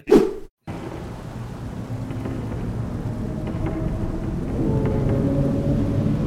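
Steady, heavy rain hisses continuously, with deep thunder rumbling low underneath and swelling slightly toward the end, after a brief sharp burst and a moment of silence at the start.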